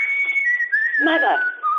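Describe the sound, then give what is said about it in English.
A person whistles a sustained, wavering high tone that glides slightly downward, with a brief burst of voice or noise mixed in midway, clear, for about two seconds. “Mother! That whistle!”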